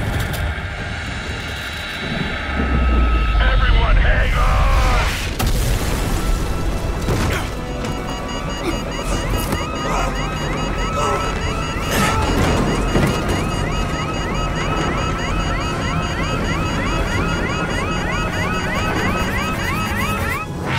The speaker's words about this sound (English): and it's just bang! We have a confirmed nuclear bomb.